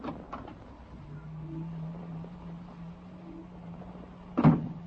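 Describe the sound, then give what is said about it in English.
A door opens with a sharp clunk near the end, after a low steady hum and a few faint knocks at the start; no one speaks. “I got a feeling up my back the minute you opened the door.”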